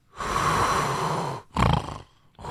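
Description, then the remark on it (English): A voice imitates the heavy snoring breathing of a man sleeping on a red-eye flight: a long, rasping inhale-like rumble followed by a shorter, harsh snort-like breath, loud, with no words spoken. “And the guy is knocked out. Like, you can hear him breathing like...”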